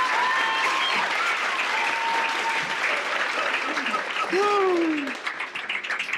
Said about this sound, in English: I know you just clapped, but can we give it up for the vulnerability of